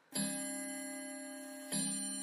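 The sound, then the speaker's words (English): A clock striking midnight strikes twice, each deep, ringing bell tone landing sharply and humming on with a long, slow decay; the chimes are fairly loud and about a second and a half apart. “But suddenly, he startled with the sound of the clock.”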